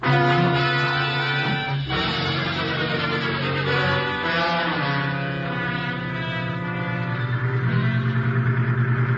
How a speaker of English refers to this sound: You lead the way in your truck, Mikan. We'll follow in the cab.